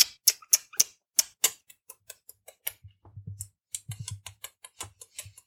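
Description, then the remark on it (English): A rapid run of sharp, smacking kiss noises made with the mouth, imitating the kissing between the characters Artie and Selma, loud and bright at first, then quicker and softer, with a low hum under the later ones. No talking. “Did you just do the can-can in kisses?”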